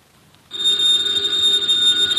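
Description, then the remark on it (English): A telephone bell in Nero Wolfe's office breaks in after a brief quiet moment and rings continuously, loud, with a bright metallic jangle that holds steady to the end. “Ladies and gentlemen, the ringing of that phone bell means adventure.”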